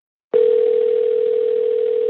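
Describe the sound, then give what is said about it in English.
A steady telephone dial tone, heard while placing a call to King James Bible Baptist church, starts abruptly after a brief silence and holds at an even, fairly loud level without any break. No voices are heard. “After seeing all this, I called Pastor Hamilton's church, King James Bible Baptist.”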